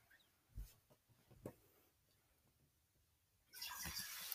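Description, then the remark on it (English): Two soft knocks sound, then water suddenly begins pouring in a steady rush that continues to the end. No one speaks. “He got water.”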